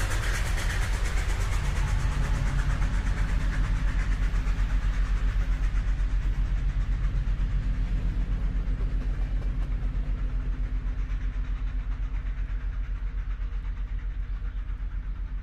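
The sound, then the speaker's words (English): A train rumbles past with a steady, deep low thrum and a faint rhythmic clatter, its brighter rushing noise slowly fading as it moves away. No voices are heard. “I told her all about my family and my hyperactive brain, how the only way to manage it is exercise and the gentle thrum of trains.”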